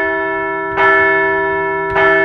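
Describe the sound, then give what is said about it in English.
A large bell is struck twice, about a second apart, each strike ringing out loud with a rich, sustained metallic hum that carries between the blows, rung to mark the Phillies' six wins in a week. No one speaks. “Let's ring this bell one more time.”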